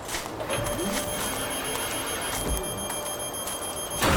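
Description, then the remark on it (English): A steady mechanical whir with thin high tones runs throughout, broken by a soft clunk midway, then ends in a loud, sudden burst as an airlock door seals shut. “Airlock sealed.”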